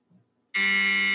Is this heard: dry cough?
no